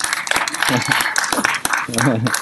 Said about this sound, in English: Why are you clapping? No, really, what's going on?